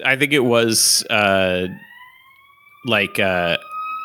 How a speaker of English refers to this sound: Jesus Christ, big time siren going by. What are you in Brooklyn?